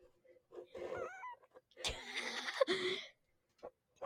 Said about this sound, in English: I have a kitten right here. Yeah.